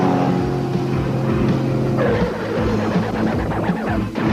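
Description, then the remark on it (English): Loud, continuous roar of professional racing engines revving and straining, with overlapping motor whines rising and falling in a dense, chaotic blend of vehicles. “There's cars, there's bikes, there's trucks, there's even boats.”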